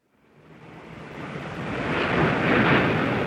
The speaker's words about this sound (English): You're hearing the sound of waves crashing on a beach below a hotel balcony in Rio de Janeiro.